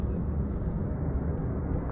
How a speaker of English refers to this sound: It's an American plane taking off. And apparently people are climbing onto the wings and they're falling off right there as the plane was taking off.